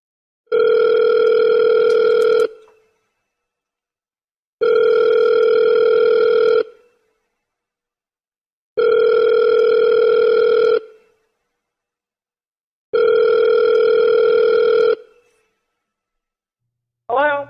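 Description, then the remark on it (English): A phone call to a woman rings out: four long, steady buzzing tones, each about two seconds with equal pauses between, before a voice briefly answers at the very end. “We're going to do one more. And call this chick.”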